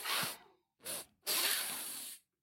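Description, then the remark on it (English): Three airy sniffing inhales with no talking as people lean in to smell each other's noses: a short sniff, a briefer second one, then a longer, steady drawn-in breath through the nose, all hissy and fairly loud. “I guess we now lean in and have a sniff.”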